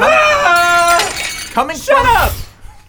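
Fine teacups dropped by a butler shatter in a bright, ringing crash, with tinkling fragments over a few seconds, mixed with the butler's loud, high, wavering shriek that slides up and down in pitch, coming from the other side of an entry hall.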